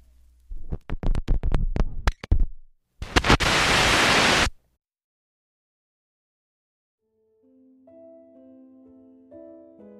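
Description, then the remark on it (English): A radio is tuned to an oldies station: a run of sharp clicks and crackles gives way to a short, loud hiss of static that cuts off abruptly; after a pause, soft tonal music fades in. “so he tuned the radio to an oldies station. Through faint static,”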